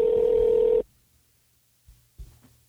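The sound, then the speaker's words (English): A loud, steady electronic telephone ringing tone sounds once for under a second as an outgoing call is dialed, then cuts off into near silence broken by a couple of faint low clicks, like a call connecting. “We're calling you. You're not calling us.”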